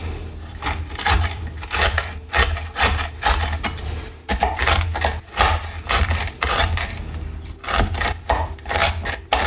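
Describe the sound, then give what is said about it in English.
Rapid, steady knife chops on a wooden board as nuts are cut in a kitchen, crisp woody taps coming in quick bursts with a couple of brief pauses, over a low steady hum and no talking. “My nice microphone in the kitchen is chopping nuts.”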